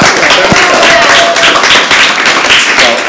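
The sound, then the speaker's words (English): A crowd applauds a contest's first-place winner, a dense wash of many hands clapping at a loud, even level for a few seconds, with faint voices and cheers mixed underneath. “And big round of applause for coming in first place”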